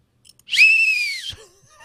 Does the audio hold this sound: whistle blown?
yes